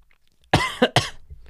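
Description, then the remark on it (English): A person coughs three times in quick succession, fairly loud, the first cough the longest and harshest, with quiet background noise before and after. “Coughing.”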